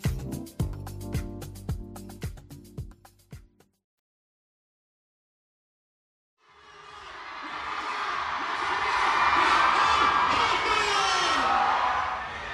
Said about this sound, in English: Right now, I'm standing at the edge of this huge crowd that has gathered around this platform on the convention floor. There are a bunch of stages like this one scattered around the expo. And all these people are waiting for a fourth generation idol